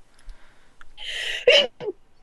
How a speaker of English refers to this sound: Gesundheit. I didn't get the mute button fast enough.